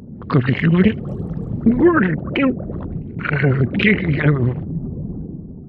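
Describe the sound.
A voice actor with a bite of Jell-O in her mouth makes a wet, gurgling underwater-creature sound, bubbly warbling vocal bursts in three or four uneven phrases, fairly loud and with no clear words.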